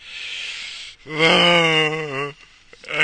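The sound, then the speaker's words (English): A long, drawn-out yawn rising into a loud, wavering moan that sags and trails off, framed by breathy inhales and exhales, with no talking. “I hope that yawn triggered a yawn on you.”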